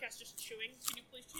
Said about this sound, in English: But you have to chew in the mic. They're rots, but they aren't rotting. There we go. That's what we do back in the sack. It's just carrot chewing